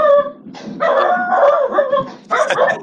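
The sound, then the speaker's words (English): A dog barks loudly in a few drawn-out, yowling bursts as a thunderstorm comes in, the longest stretching over a second, with no one talking. “A thunderstorm is coming in, so he's going to be barking all night long.”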